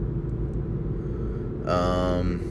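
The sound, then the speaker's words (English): Steady low rumble inside a moving car, the deep road and engine drone filling the whole stretch, with a short brighter tonal sound rising over it toward the end. “again, I'm not looking at my phone. I'm driving.”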